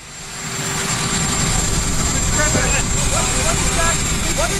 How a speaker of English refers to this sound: But it has one audio file on it, which is helicopter sound.